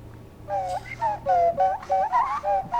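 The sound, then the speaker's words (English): A breathy, whistle-like nose flute plays a wavering, improvised tune in short phrases, sliding between pitches, moderately loud with a low hum underneath. “That was the nose flute.”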